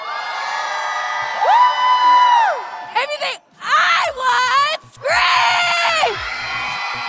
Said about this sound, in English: Okay, y'all get to pick who won. Who do y'all think won? If you think I won, scream.